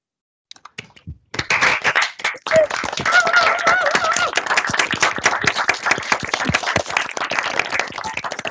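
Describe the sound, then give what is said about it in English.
Dense applause from a group of people on a video call starts after a few scattered claps and continues steadily, sounding slightly thin and compressed, with a few voices faintly mixed in. “Does everyone mind turning off their mics so we can give a round of applause?”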